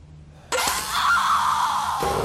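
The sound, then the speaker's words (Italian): A person screams in pain, one loud, harsh, sustained cry that bursts in suddenly, holds for about a second and a half, then cuts off abruptly, as the person falls back from a drill, hand pressed to a bleeding eye. “Caddi indietro, gridando, lontano dal trapano, tenendomi la mano premuta sull'occhio sanguinante.”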